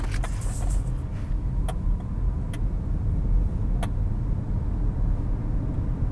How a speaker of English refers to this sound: Because this traffic makes you want to just fucking be homeless at this point, you know?